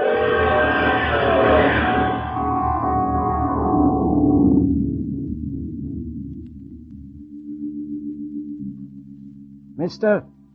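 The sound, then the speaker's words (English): A train crashes into a car: a loud, screeching, roaring rush that fades over several seconds into a low steady hum, followed by a brief high-pitched whistle near the end. “There's pieces of it spread a quarter mile up the track.”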